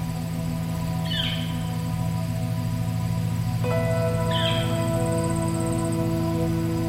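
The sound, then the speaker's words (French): Two short bird chirps ring out a few seconds apart in a field, over a steady low droning hum. No one speaks. “Quelques oiseaux de temps en temps.”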